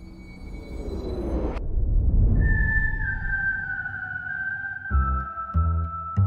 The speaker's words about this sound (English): Whistling evokes pleasant images. A quiet country lane, a sailor on a sun-bleached deck, a walk downtown at the beginning of spring.